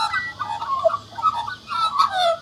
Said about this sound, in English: This magpie seems happy to be perched in its trees, singing away and watching the people and the cars going past.